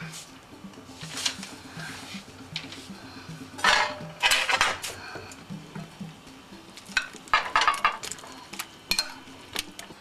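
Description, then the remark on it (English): Metal utensils clink and scrape against a nonstick frying pan with a little vegetable oil in it, in irregular bursts, moderately loud, over a faint steady hum with a low murmur beneath. “Give it a chance to heat up, and then I'm going to have my matzah and egg mixture in the frying pan.”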